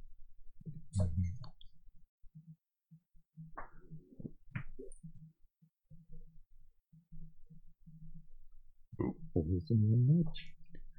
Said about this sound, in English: And then Seeker is rolling six dice with difficulty three. That's a zero and a one. I rolled every single one of each number.